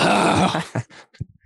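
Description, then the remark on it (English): A long, loud, deep belch after drinking Coca-Cola rumbles for over half a second, then trails off into a few short, fainter guttural bursts. No one speaks. “Just belching.”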